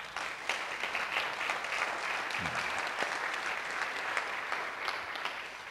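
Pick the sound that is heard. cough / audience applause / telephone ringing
audience applause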